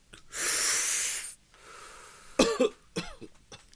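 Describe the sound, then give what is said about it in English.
A long, breathy exhale is followed by a few short, rough coughs in quick bursts, with no talking. “Hey, you coughing, bro?”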